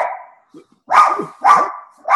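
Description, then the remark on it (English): A dog named Louie barks loudly, three sharp barks with a fourth starting, spaced about half a second apart, preceded by a brief tonal whine. “Uh-oh, new podcaster. Or what's your dog's name again?”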